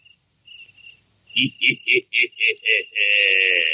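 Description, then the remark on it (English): A cricket chirps: a faint, thin trill, then about seven loud, evenly spaced chirps, ending in a steady, continuous shrill trill. “I hope one isn't a cricket.”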